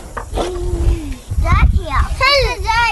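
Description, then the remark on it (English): Children playing in an elementary school playground, with overlapping high-pitched shouts and squeals rising and falling over a steady background murmur of more voices, moderately loud and continuous throughout. “Ah, there are kids playing in the playground in an elementary school over there.”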